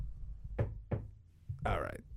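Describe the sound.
Two quick, sharp knuckle raps on wood, fairly loud, followed a moment later by a man beginning to speak.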